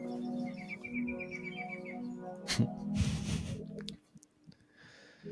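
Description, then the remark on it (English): A bird chirps in a quick, even run of short high notes over a steady low hum, then a sharp burst of rustling noise breaks in before things go quiet. “The bird chirping in the background.”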